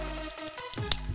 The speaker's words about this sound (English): Let's open up this fortune cookie and see what it says. All right, go on. You got to know me. Yeah, I got mine open. Ready? Yeah, you do yours first. Breaking it open now.